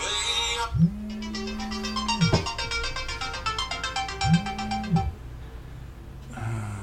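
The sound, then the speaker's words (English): A phone ringtone plays for an incoming call, a bright repeating sequence of electronic tones with two low sliding swoops, clear, lasting several seconds with no talking. “Getting a phone call.”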